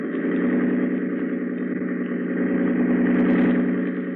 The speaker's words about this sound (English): hold tight to the wheel and open the engine up full. Anything you say, ma'am.